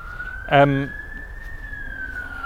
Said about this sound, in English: You hear the police siren? See, don't get that in the countryside.